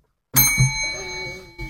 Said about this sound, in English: Ring the bell!